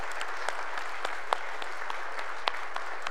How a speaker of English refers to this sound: Let's just applaud their family and friends.